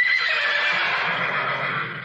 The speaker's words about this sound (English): And in that in the cartoon, when they ever say her name, you hear the horses in the background whinny, just like whenever you say Frau Blücher in Young Frankenstein.